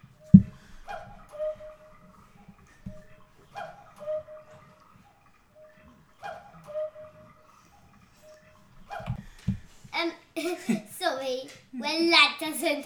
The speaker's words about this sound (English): No, the cuckoo clock went off and it was 12 o'clock, so it was all the cuckoos, wasn't it, today?